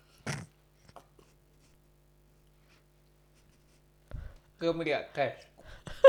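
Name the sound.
sipping water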